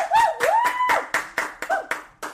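A short burst of light hand clapping, about a dozen quick, crisp claps in an uneven rhythm, with a high wavering whistle-like tone sliding over the first half.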